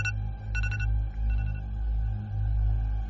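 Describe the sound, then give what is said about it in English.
An alarm set the night before rings with short bursts of bright electronic tones, loudest at the start and then fading, over a steady low droning hum. No one speaks. “You set that alarm last night. You gonna pretend like you can't hear it. Okay. It's gonna keep ringing.”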